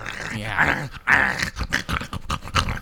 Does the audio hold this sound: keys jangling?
no